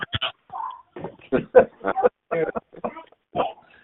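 Pigs oink and grunt in quick, irregular bursts in a caller's background, heard through a thin, phone-like line. The snorts come roughly every half second at moderate loudness, with no clear talking over them.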